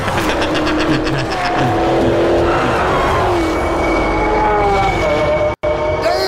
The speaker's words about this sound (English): So, ladies and gentlemen, I present to you the where is it? The Dodge Demon, and here is it fucking smoking a Lamborghini